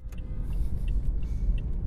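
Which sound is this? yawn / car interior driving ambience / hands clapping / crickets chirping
car interior driving ambience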